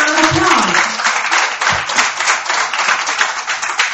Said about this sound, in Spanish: Dale un aplauso a Dios.